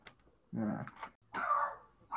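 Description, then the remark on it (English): A dog gives two loud barks about a second apart, each a short harsh burst with a brief pause between, and a hint of a third starting at the end. “Is that your dog”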